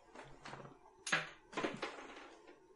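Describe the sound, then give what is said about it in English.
A cat shuffles and bumps around inside a cabinet, making several short rustling, knocking bursts in an irregular rhythm, fairly quiet, with no talking. “Yeah, my cat is in my cabinet.”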